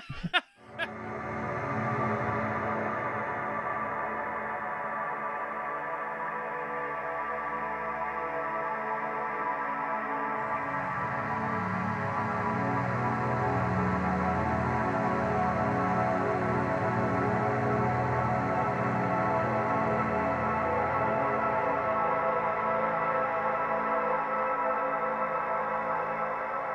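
A dense, droning synth soundscape holds steady for nearly half a minute, thick layered tones washed in echo and chorus, shifting midway to a brighter, fuller texture without any voices.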